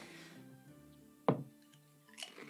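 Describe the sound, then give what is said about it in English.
Quiet crunching of food, one sharp crisp bite followed by a softer second crunch a moment later, over a faint low background hum. “Professor crunching.”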